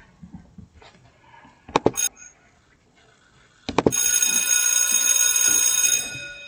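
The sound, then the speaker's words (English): A school bell rings loudly and continuously for about two seconds with a bright, metallic clatter. A few sharp clicks and faint low rumbling come before it. “When you hear that bell, you know school is in.”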